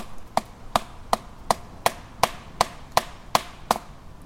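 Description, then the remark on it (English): About eleven sharp wooden knocks at a steady, fairly quick pace, each a crisp hollow thud of even loudness, with faint background hiss in between and no talking. “So we're gonna do some knocking here.”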